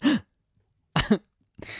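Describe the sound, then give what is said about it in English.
A voice imitates a group of grade 9 students reacting to a fight with short, sharp gasps: three quick breathy bursts separated by brief pauses, moderately loud, with no words spoken. “And all of us were like, it's a little gasp.”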